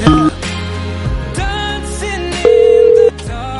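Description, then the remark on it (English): A phone line connecting: a short electronic tone at the start, then a louder, steady ringback beep lasting under a second, with music playing underneath throughout. The call is placed on air during the Ham Radio show to reach Aiden Ashley. “All right, shut up, because we're getting Aiden on the phone.”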